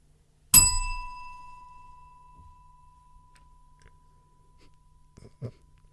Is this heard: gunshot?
no